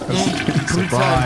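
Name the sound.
toilet flushing sound effect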